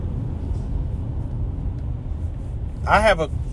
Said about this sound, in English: This is frustrating, man. These doggone trucks. Like, all these silly trucks, man. All these trucks in the line. What y'all expect people to do in traffic?